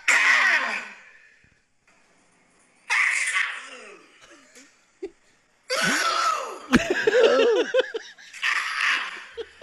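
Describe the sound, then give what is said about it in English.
A woman in a video being played sneezes several times in a row, each loud, breathy burst with a high, squeaky edge, separated by short pauses of quiet and with no talking around them. “Than her actual sneeze?”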